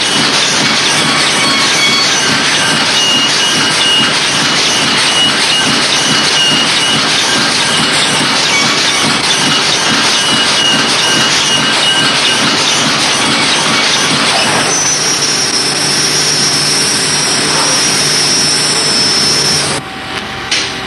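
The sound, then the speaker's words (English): Money printing presses running in Washington: a loud, dense mechanical roar with a fast, steady clattering rhythm, smoothing into a whining hum partway through before cutting off abruptly. No one speaks. “This is the only place where there are presses like this that turn out these pieces of paper we call money.”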